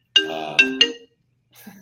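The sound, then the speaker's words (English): A phone ringtone chimes three bright tonal notes in quick succession, clear, followed by a short pause and then a faint murmur of a voice. “We're having compassion for whoever's phone that was, so don't worry.”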